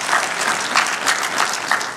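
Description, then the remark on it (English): A church audience claps steadily, a dense, sustained patter of applause at moderate volume with no one speaking over it. “Also, you know, go ahead, give him a round of applause.”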